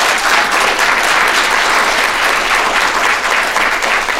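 A steady round of applause from a sizable crowd, dense and continuous clapping at a loud, even level throughout, with no voices standing out.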